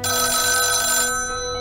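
A telephone bell rings loudly in a hotel room in a single bright, metallic burst that cuts off abruptly, leaving a fading, shimmering tone. No one speaks.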